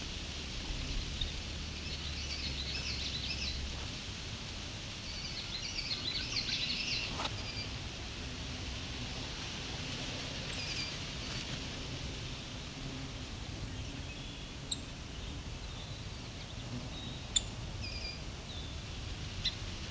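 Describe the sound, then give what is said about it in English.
A few sharp, isolated tick-like chips from a song sparrow ring out at irregular intervals over a steady hiss of outdoor background noise, brief. “So that call there, that call, right, that's a song sparrow.”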